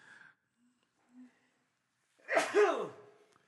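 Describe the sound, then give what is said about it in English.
A single loud, sharp sneeze bursts out after a few quiet moments, with a falling, breathy tail and faint murmurs before it. “That was loud. Gesundheit.”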